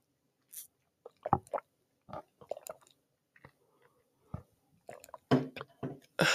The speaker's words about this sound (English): So let's also just take a sip of water or whatever beverage you have nearby, whatever your favorite drink is, go grab it. Let's take a sip together. One, two, three.